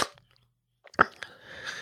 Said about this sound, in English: Sneeze! Bless you.